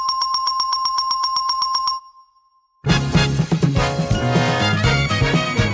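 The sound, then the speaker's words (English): A doorbell chime, the correct-answer sound on The Price is Right, recorded by Ed after testing doorbells at a hardware store. It rings out in a quick, steady string of bright, high electronic pulses for about two seconds, then stops; after a short silence, loud full-band music begins. “And for the correct answers, Ed went to a hardware store and tested a bunch of different doorbells before recording the perfect option.”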